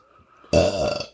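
burp

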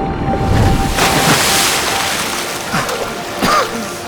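ocean water

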